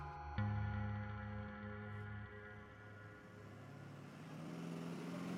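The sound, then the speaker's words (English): A school bus engine on a students' field trip in the Hyde Park neighborhood of Augusta rumbles, starting with a sudden loud burst and then idling in a deep, steady drone that swells slightly toward the end. No voices. “Get in the bus! We're coming.”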